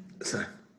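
A single muffled cough from a man coughing into his armpit, somewhat dampened, with a brief raspy burst that trails off into quiet.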